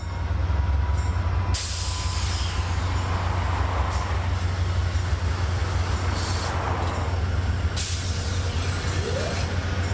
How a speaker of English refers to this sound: According to my watch, it's 4 minutes past eight, and I can hear the diesels revving up at the front of the train. The lights are flickering as they change from station power to train power.